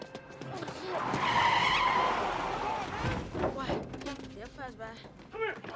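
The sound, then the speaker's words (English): A getaway car for men who just ran out screeches away with a long, loud tire skid and revving engine, followed by excited shouting voices as the vehicle tears off. “So it's an escape car for these guys that just ran out.”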